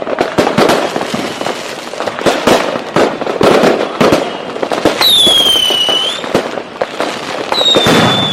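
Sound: fireworks going off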